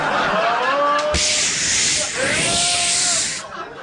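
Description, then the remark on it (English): A video game gel spray shaped like a bat lets out a loud, steady, bright hiss for several seconds, with a sharp burst partway through and soft warbling tones underneath before it cuts off. “A well-placed gel spray shaped like a bat for no reason.”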